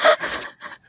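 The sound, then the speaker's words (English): A voice imitates a raspy, gravelly croak in a few quick breathy bursts, fairly loud, with a rough scraping texture that trails off into a short final rasp. “Croak.”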